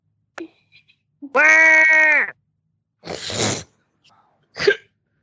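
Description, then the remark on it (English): A person imitates a goat with one sustained, nasal bleat lasting about a second, followed by a couple of short, breathy, sneeze-like bursts. “give me your best goat impression right now.”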